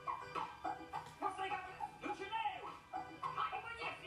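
A dog whimpers and yips over and over, high whiny cries rising and falling in quick bursts that fill the whole stretch at a moderate level.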